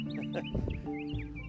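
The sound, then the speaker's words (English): A bird calls with a run of quick, high chirps and short swooping notes, heard fairly quietly over a steady low rumble in the background. “Can you hear that bird over the thunder you're hearing?”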